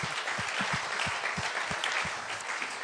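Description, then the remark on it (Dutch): A crowd applauds steadily for a few seconds, a dense wash of clapping with some sharper individual claps standing out. No one speaks over it. “Ja, kom op, laten we hem een applaus geven.”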